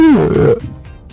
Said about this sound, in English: sounds like you burped in the microphone.